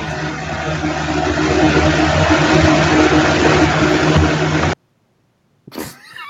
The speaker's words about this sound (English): Guys, I'm leaving that one in because now you can see what this train is.